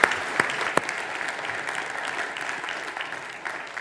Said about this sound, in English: Should we give the band a round of applause as well, please?